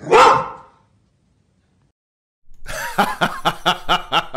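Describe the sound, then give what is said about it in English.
A dog lets out one loud bark, goes quiet for a couple of seconds, then fires off a quick, rhythmic run of about eight shorter barks. “That dog knows his stuff.”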